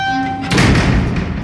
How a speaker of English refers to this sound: And you hear a very loud metal thud.